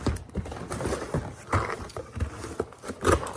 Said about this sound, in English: Sorry, I grabbed the worst pair of scissors I have here and it's not gonna do a very good job.